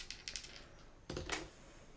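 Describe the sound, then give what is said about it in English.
A few light plastic clicks, then a short, louder clatter of dice tumbling and settling on a hard tabletop, with no voices; the roll, made with disadvantage, comes up as double critical hits. “I rolled double crits.”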